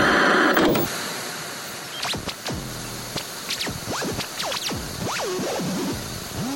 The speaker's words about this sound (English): A new radio station will emerge from this static.